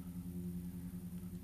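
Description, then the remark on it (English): A neighbor's car engine rumbles steadily with a deep, humming drone that holds constant for the whole moment, unbroken, with no voices over it. “Just like you just heard that car start.”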